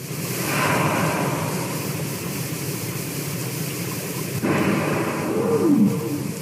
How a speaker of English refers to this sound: In a cold, isolated bay in Alaska, you can watch humpback whales rise slowly to the surface, then hear them breathe.